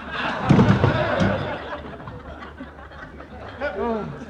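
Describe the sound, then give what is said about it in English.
A heavy punch lands with a loud thud and scuffling clatter as a man is knocked out to the floor, followed by a short vocal groan near the end. “you knocked … out”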